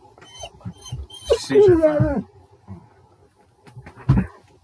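A dog vocalizes in a drawn-out, wavering whine that rises and falls for about a second, with a few shorter, softer yips and grunts around it.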